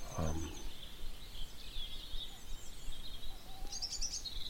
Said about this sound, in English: That's the dunnock. That joined in after about 15 minutes. That one. It's quite nondescript. Hear that dunnock? It's really almost the most nondescript. It just goes du du du du du du du du du du.